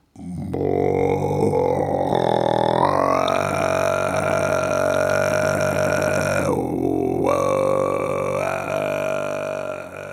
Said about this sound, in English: There are three broad styles of Tuvan throat singing. Kargara, which is very low, like a growling sound.